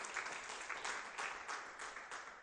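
An audience applauding, a steady wash of many hands clapping with no voices over it, rising and falling slightly in loudness for a couple of seconds.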